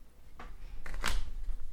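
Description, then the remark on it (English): A short burst of playing cards being shuffled during a card game as a card is shuffled into a player's own deck, a few quick papery flutters building to a brisk riffle, with no one speaking. “I'm going to take her operative off of the tar pits, and I'm going to shuffle it into my own deck.”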